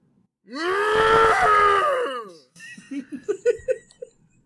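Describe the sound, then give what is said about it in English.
A person lets out a loud, drawn-out imitation of a cow's moo lasting about two seconds, then breaks into a short burst of rhythmic laughter. “And then I want to hear that moo.”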